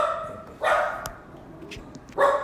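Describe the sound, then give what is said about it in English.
A female pet dog barks a few times in short bursts, with two strong barks separated by a pause and some quieter yips between, alone without talking. “Our dog went a little crazy.”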